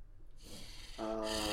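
heavy breathing

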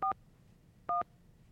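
telephone being dialed

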